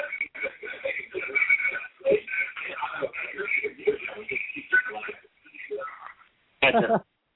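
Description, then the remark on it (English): A delayed echo of stream audio, with roughly a 15-second delay: tinny, radio-like voices play back for several seconds, fade into a brief lull, then return in a short, loud burst. “I'm getting like weird echoes now.”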